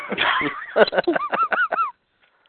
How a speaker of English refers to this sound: That sounds funny. Sounds like a bicycle horn. Sounds like a duck, too.